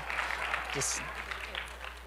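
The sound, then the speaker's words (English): A church audience claps at a Sunday morning service as the preacher says he is back, a steady wash of many hands that stays fairly even for about two seconds, with a man's voice speaking over it and a brief bright hiss partway through. “No, you don't need to clap.”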